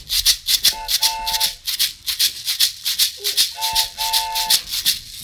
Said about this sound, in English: She's an oatmeal box and some dried beans.